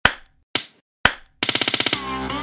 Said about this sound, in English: I'm gonna clap.